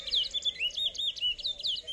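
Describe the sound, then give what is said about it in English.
A songbird in a singing competition sings a rapid, continuous stream of bright, warbling chirps and whistled trills, clear, with no one talking over it. “These birds sing because they're competing with each other for the female.”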